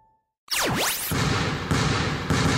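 A rising-and-falling whoosh, then a basketball player dribbles in a steady rhythm of three bounces about half a second apart before letting a shot fly, thudding under a dense, roaring wash of noise.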